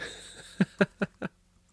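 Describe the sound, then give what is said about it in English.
Four quick, evenly spaced taps of someone typing a message, each a short clicky knock, over a faint background hum with no voices. “I'm typing to her right now because she's like, "What the hell?"”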